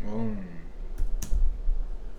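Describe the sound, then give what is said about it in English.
Two sharp keyboard clicks land about a quarter second apart, following a brief murmur of voice at the start, with a low background hum throughout. “I'm typing like an old tape person.”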